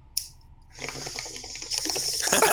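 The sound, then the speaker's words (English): A bubbling, wind-like whoosh of something flying around at great speed swells steadily over a couple of seconds, its gurgling, rushing texture growing louder toward the end, heard alone without any voices. “Yeah, so with a great speed and the sound of almost like a bubbling wind.”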